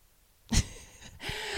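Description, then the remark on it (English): A dog, Wushu, with his head on the speaker's shoulder during a recording, sniffing in two loud, breathy bursts of rushing air, each starting with a soft thump, with a stretch of quieter snuffling in between. No one speaks. “My dog jumped up and just put his little head on my shoulder as I was recording this. Can you hear him sniffing?”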